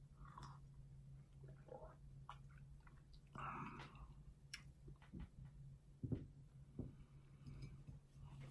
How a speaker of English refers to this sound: Let me get one more sip from this magical cup.